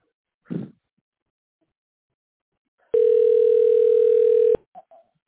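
A single steady telephone ring tone of an incoming call from the speaker's son, loud, holding for about a second and a half after a brief soft rustle, then stopping abruptly with only faint noises afterward.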